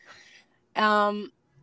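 An old dog barks in a house: a softer, brief bark first, then a loud, drawn-out, strongly voiced bark after a short pause, with no talking around it.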